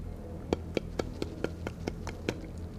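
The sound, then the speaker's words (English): Light, quick footsteps of little feet walking, not kicking, patter across a wooden floor, about eight soft taps in an even rhythm over a low, steady background hum. No one speaks. “as little feet on wood... like they're walking, not like they're kicking against like a wood door.”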